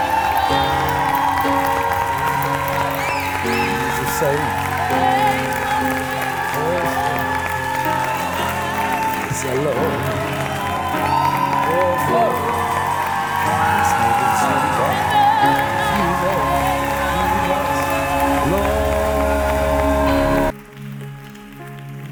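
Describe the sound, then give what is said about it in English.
A church audience claps and cheers in worship of Jesus steadily for about twenty seconds, a dense, sustained wash of applause with scattered shouts and whoops, cutting off abruptly near the end. “Those who really need that washing will clap better.”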